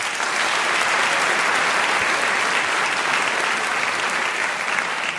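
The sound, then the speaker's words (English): A steady wash of audience applause fills the whole stretch, many hands clapping at once in a dense, even roar that neither builds nor fades, with no voices rising above it, as the audience applauds a speaker's introduction again so it can be fixed in the edit. “if you could applaud again, we'll fix it in the edit.”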